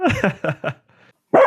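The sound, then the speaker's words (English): A dog barks three times in quick succession, loud, then after a brief quiet pause lets out another sharp bark. “My dog's coming.”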